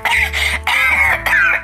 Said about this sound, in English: I'm coughing now, honey. I'm not sick, I'm still here, you guys.